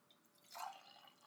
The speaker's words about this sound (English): Pouring a drink.